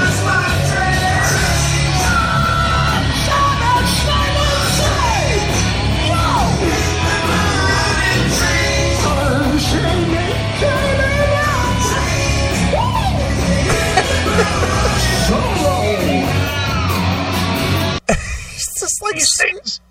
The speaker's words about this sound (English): Yeah, he's just screaming over the background, the backing vocals.